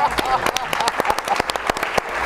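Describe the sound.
An audience applauds steadily, a dense wash of many hands clapping with sharp individual claps standing out, fairly loud throughout, with faint voices mixed in.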